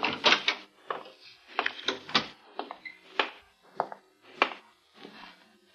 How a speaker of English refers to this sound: Finally, approaching footsteps, and we watched to see who would enter.